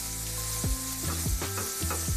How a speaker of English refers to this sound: I just fried my meat for 7 minutes. You doesn't have to cook it for very long.